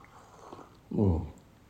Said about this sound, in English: Let me take a sip of my tea.